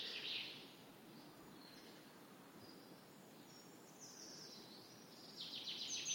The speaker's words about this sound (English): There's that male chaffinch again. So much good bird life here. Sounds of an English woodland in early spring.